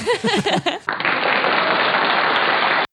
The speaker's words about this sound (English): Only half the claps.